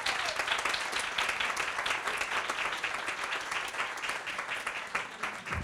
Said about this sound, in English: why don't you come up here for a round of applause and read your wonderful novel and we can have a chat.